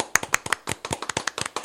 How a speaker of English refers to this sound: Yeah, we're clapping. We have to keep clapping until she gets her headphones on.